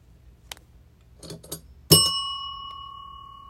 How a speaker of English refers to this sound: I got the bell out today.